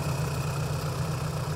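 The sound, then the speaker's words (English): A tractor engine idles steadily, a deep continuous rumble with a low throbbing hum that holds even throughout, with no voices over it. “my son David bought this tractor, and I bought a 730 John Deere diesel”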